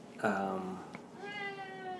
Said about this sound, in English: You can hear my cat. There's the cat.